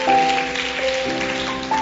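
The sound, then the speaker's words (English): Steady applause from a group for the children, a dense crackling patter that holds for about two seconds, with sustained musical tones ringing underneath. “I want to give a round of applause to the children.”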